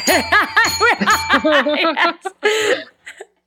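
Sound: small bell ringing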